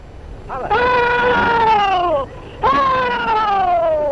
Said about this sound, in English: recorded in the 1930s at a Civil War memorial event. About 8 Confederate veterans are there, and all of them are at least in their 80s. One by one, the old veterans perform their war cry, which was last heard on a field of battle over 150 years ago.